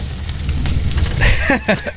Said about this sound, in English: It's literally a campfire sound. Is that the fire emoji sound? This is what the fire emoji sounds like.